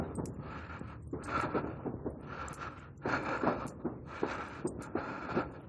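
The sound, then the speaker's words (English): Heavy, ragged breathing, each breath a loud rushing burst roughly once a second, as someone pants hard after walking a little over a mile in the cold. “I mean, I know it's cold and all, but I am breathing really hard for having walked a little over a mile.”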